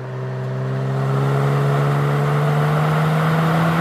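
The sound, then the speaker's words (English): A V6 car engine revs loudly and steadily, its droning hum climbing slightly in pitch over a few seconds, with no talking. “Can't make a V6 sound good.”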